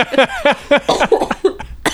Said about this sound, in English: Oh, I'm coughing.